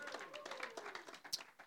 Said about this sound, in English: Clap for the Lord Jesus. Amen. Hallelujah.